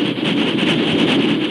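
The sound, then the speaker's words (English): A fast train roaring from the east roars steadily and loudly, a dense rumbling rush with a hissing edge that holds constant throughout, with no voices present. “While the Lone Ranger rode out of the west, with Tonto following, fully half a day behind, a fast train roared from the east.”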